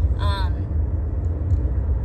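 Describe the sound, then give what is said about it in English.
A steady low rumble of an idling car engine, heard from inside a car, with a brief higher tonal sound near the start and faint soft clicks later on. “Sorry, I'm in my car.”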